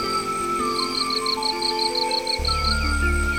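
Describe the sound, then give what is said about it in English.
High, rapid peeping calls of spring peeper frogs repeat steadily over a constant chorus of chirping crickets and a low, rushing background rumble, with no voices present. “I hear some spring peeper frogs too.”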